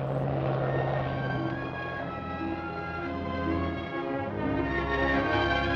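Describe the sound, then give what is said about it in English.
A propeller plane's engine drones steadily throughout, a loud continuous buzzing hum with layered harmonic whine, as if heard from inside the aircraft in flight. No voices. “she had solemnly promised him that she would never take such a crazy risk as to go up in one of those new-fangled aeroplane things.”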